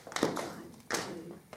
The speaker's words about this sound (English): Can you clap while you count? 1, 2, 3. How about tapping while you count?